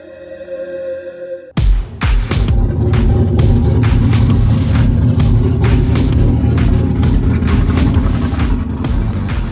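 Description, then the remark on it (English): A Chevy Nova V8 engine with a big, choppy cam starts up and settles into a loud, lumpy idle with a choppy, loping rhythm, steady with no voices. “That is his Chevy Nova. Nice, big, choppy cam for a really cool-sounding idle.”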